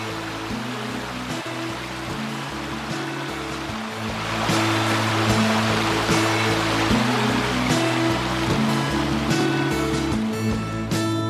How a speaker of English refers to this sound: Her father wished to name it Davy's Falls after her. It is impossible to understand from where this waterfall starts and where it ends.